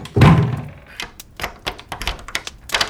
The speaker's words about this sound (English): Quite satisfied, he closed himself in his room and locked the door.